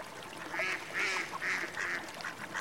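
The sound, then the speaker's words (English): Five little ducks quack in a quick, steady series of about five nasal calls, moderately loud, with no talking and only a faint background hiss. “Following after the two foxes were five little ducks.”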